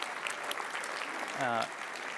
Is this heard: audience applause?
yes